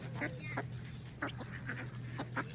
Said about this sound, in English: Got to be a bird.